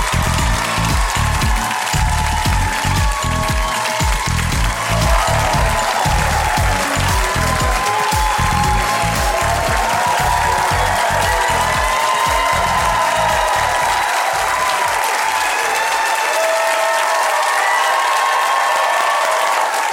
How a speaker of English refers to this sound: And when they walk in, I thought we could give them a standing ovation, do a little clapping, you know. Just, this is their day, and we're here to honor them.